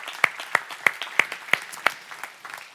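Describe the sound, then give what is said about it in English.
A church audience claps to the Lord, with a steady run of about six sharp, evenly spaced claps standing out over a wash of crowd clapping before it thins and fades. “Let's clap to the Lord.”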